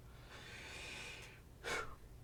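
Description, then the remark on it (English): Quiet, shallow breathing from inside a strange room: a long airy inhale followed by a short, sharper exhale, with a faint low rumble beneath and no voices. “The noise, the light, the people and things around him slowly disappeared into the ether as his focus sharpened against a clanking and ghostly shallow breathing from inside the strange room.”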